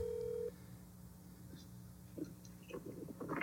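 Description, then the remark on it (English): A phone briefly rings for an incoming call with a single steady electronic tone that cuts off after half a second, followed by handling clicks and rustling noises. “trying to call me.”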